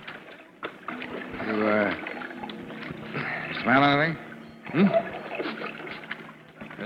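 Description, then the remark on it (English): Water sloshes and laps steadily as a rowboat is pushed along by an oar against piers, a continuous splashing under a few brief spoken exchanges between men. “But I can push her like this. The oar against the piers.”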